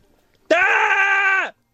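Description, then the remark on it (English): A single loud recorded scream sent in by a listener, held at a steady pitch for about a second, starting abruptly and cutting off with a slight downward slide, with no other sounds around it. “Send us in your screams and we will do our best. We can play them out here this evening because it's kind of a little bit therapeutic, isn't it?”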